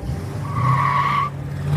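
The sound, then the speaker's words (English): A car engine rumbles steadily while tires let out a sharp, sustained screech lasting under a second as the vehicle speeds off from a filling station. No voices are present. “or maybe they had spent all their money at the dance hall, or even perhaps they were feeling a little extra rebellious after a few stiff drinks, the two ended up speeding off from the filling station without paying for their gas.”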